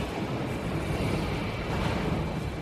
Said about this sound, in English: The first thing you notice inside the Renault factory, where some of Europe's most popular car models are built, is the noise. The buzzing of pneumatic drills, the stamping of sheet metal, the constant humming of conveyor belts.